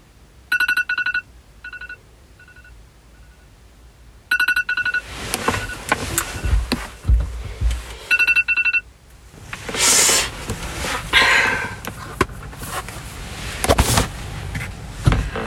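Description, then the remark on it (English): A phone alarm rings in short, bright, melodic bursts that repeat several times, then gives way to louder rustling and clattering noise with no talking. “My alarm felt like a safe haven.”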